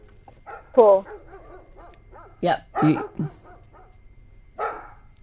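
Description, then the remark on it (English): A person imitates a dog barking with several short, loud vocal barks and yips at irregular intervals, pretending to walk a dog, with a faint low hum underneath. “I'll get some barking sound effects”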